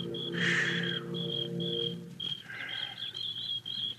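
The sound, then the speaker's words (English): A steady, high cricket trill pulses on and off while a few birds chirp and warble faintly over it, with a low constant hum underneath and no voices. “The sound of birds and crickets seemed loud in my ears as we stood there, looking at each other, saying nothing.”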